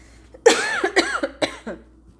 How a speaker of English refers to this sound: So, Lordy, I'm about to have a coughing fit. I can feel it coming.